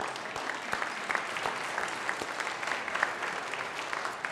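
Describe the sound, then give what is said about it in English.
An audience at Bethel applauds the members who have joined since 2004. The applause is steady, a dense wash of many hands clapping with scattered sharper claps popping out, sustained at an even level with no voices. “And we want to applaud you.”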